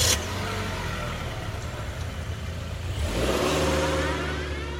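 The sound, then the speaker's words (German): A car engine turns over and catches, then revs up loudly and accelerates, its steady drone rising in pitch after a few seconds, with no voices. “Ihres erste eigene Auto. Oder Ihre erste Fahrstunde.”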